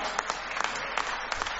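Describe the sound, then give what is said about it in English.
Clapping sound effect drop, used in place of a broken applause drop: a handful of sharp, bright hand claps in a loose, uneven rhythm over a steady hiss of crowd-like noise, with no one speaking. “I have to use the clap one, not the applause.”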